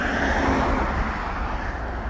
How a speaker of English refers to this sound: There's a car just went past with a license plate.